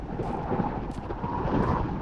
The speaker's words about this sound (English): We should have waited out the storm.